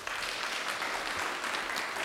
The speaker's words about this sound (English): Thank you so much. Why don't we give him a clap?